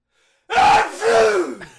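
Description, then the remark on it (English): A person does a loud, deliberate fake sneeze: a drawn-in voiced "ah" followed by a longer falling "choo," with no other talking. “Actually, you're triggering my sympathetic sneeze impulse.”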